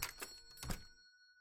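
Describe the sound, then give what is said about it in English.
A small shop door bell gives a bright, high ding that rings on and fades slowly, following a couple of soft thunks as the door opens. “And you make your way in and you open the door and there's the little bell and it goes ding.”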